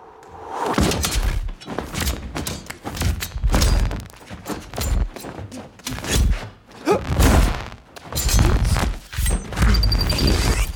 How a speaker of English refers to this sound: Denis liked the effect, but felt maybe it wasn't edgy, dangerous, weapon-like enough. And it wasn't until I had an accident with a synthesizer where it started to create a glitching and clicking.